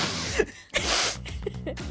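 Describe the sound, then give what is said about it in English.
Loud, airy sniffing right into a microphone: three or so breathy nasal bursts in quick succession, separated by brief pauses, with a faint throaty undertone. “Sniff into the mic.”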